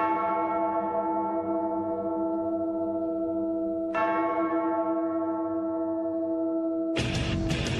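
A deep bell tolls twice, several seconds apart, each strike ringing out with a long, humming decay before a loud wall of distorted sound crashes in at the very end, as the intro of a metal song.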